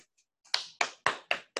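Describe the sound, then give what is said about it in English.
Hand claps ring out crisp, about five sharp claps in a steady rhythm, each with a quick decay, preceded by a couple of faint soft taps. “Good clap and hands.”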